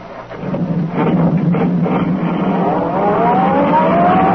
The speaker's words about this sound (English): The sedan sped along the concrete after Brinkley's car.